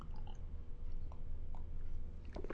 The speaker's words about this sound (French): Pardonnez-moi et permettez-moi une petite gorgée d'eau.